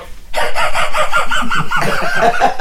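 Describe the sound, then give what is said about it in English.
A person imitates the wheezy snicker of Muttley, Dick Dastardly's cartoon dog: a loud run of rapid, breathy, clucking laugh bursts in a steady rhythm, with no other sounds. “He does a great Muttley.”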